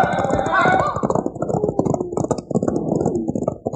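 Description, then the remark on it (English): Horses' hooves gallop in a fast, continuous drumming rhythm, loud, as riders turn their horses to get away, with a man's voice shouting over the hoofbeats near the start. “Turn those horses, boys! And let's get out of here!”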